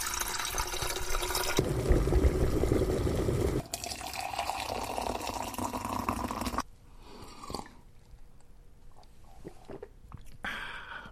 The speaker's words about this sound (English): Well, let's put the kettle on then.